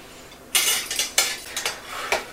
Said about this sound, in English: I'm just using kind of like a spoon to scoop it from the pan into the plate. I have my plate on the stove here.